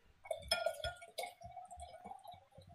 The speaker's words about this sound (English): Hold on, I gotta refill my wine glass.